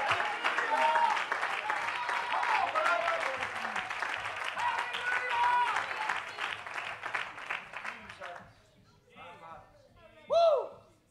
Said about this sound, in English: Clap your hands and love him. Hey. Somebody clap your hands and love him.